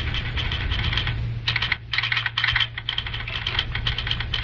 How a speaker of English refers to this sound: Tonight, the Green Valley handles its first fruit train from the west. Bill Reed is busy with the telegraph key and phone, clearing the line so that the hotshot will have a straight run.